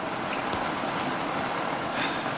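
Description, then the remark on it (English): Steady rain falls over a flat landscape with ditches and a line of poplars, a dense, continuous hiss with scattered patters of drops, even and moderately loud throughout, with no voices. “Ditches. A line of poplars. The sky. Rain.”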